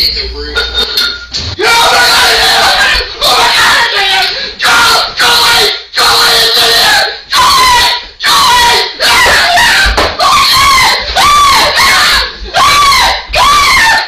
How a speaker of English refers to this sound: Was he yelling for his wife or something? He has a baseball bat and he's just yelling at it to go away.